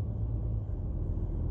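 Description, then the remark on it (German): A steady, low rumble fills the inside of a moving car, a constant droning hum with no voices, holding even and fairly loud for the whole short stretch. “Ihr seht es, auch wenn ich gerade Auto fahre, ich bin sehr viel am Gestikulieren.”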